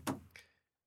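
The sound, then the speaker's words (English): Two quick knocks on a hard surface, a heavier thump followed by a lighter tap, like fingers drumming on a table. Fairly quiet, with no voices. “That was drumming too.”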